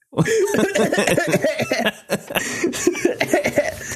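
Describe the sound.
A burst of harsh, sputtering coughs comes in quick succession for several seconds, loud, like someone choking on smoke, with a laughing edge suggesting a voice imitating the fit of a show character named Nikki.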